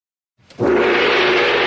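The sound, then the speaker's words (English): A single loud gong strike that blooms into a bright, shimmering wash with a steady humming tone underneath, ringing on without fading for over a second. “Ah, by the sound of the gong, it must be time for Mystery Movie Moment.”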